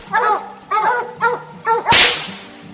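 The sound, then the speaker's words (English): Hunting dogs bark and bay at a raccoon up a tree during a night coon hunt, in four drawn-out, rhythmic bursts, loud, followed by a sudden sharp, loud crack near the end as the barking continues faintly. “After this tree, we'd cast the dogs two more times and tree one more coon before we called it a night.”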